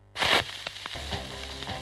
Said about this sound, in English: This is exactly what a record made out of ice sounds like. Enjoy.